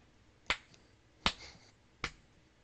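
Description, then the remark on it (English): Three slow, evenly spaced claps, the Joker clapping in his cell, each a sharp crisp crack with a brief ring after it, about three-quarters of a second apart. No voices, just quiet between the claps. “Joker clapping in his cell.”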